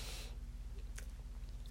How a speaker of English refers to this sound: I'm drinking coffee as I'm talking. Sorry, I just took a sip of my coffee.